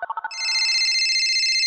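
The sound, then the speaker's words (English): A quick run of four short electronic beeps leads into a sustained, bright warbling phone ring, loud, with no voices present. “You guys, it's time to phone a friend.”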